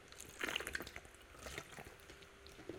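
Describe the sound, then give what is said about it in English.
Someone takes a few quiet sips of water, with small wet slurps and a soft swallow against a faint background hiss. No one speaks. “Oh, my throat is so dry. Hold on, let me drink some water.”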